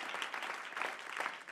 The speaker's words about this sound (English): Come on, if you believe that, clap your hands.